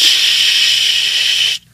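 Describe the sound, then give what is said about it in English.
A steady, loud hiss of pepper spray being sprayed at a man by Mayor Ted Wheeler, in one continuous burst for about a second and a half, then it cuts off abruptly into near silence. “Oh, I can't believe he just pepper sprayed me.”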